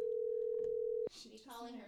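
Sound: phone call ringing tone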